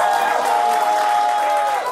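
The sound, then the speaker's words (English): A late-night TV show audience cheers and applauds loudly and steadily for about two seconds to cast a vote, a dense wash of clapping with high whoops and sustained yells riding on top. “If you vote fuck him, make some noise.”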